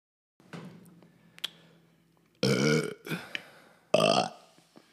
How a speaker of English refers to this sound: Those are our monster burps, and I think that was how we're going to introduce every episode, by burping.